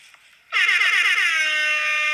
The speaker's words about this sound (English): Let me play my air horn again, please. Let me play it one more time.